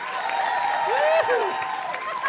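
An audience at the European Beer Cafe breaks into a round of applause after a report segment, steady clapping filling the whole stretch, with cheers and a rising whoop cutting through the crowd noise.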